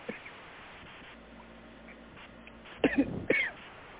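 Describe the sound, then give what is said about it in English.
A person coughs a few harsh times in quick succession near the end, breaking a quiet, faint hum. No one speaks. “And they, you know, they pick up, and I'm going to have a, excuse me, I'm coughing.”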